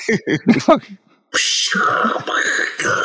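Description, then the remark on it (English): Someone imitates battle noises with their voice: a few quick, punchy vocal bursts, a brief pause, then a long, loud, hissing buzz like a blast or energy beam. “Battle noises. You hear the bung, the buzz off.”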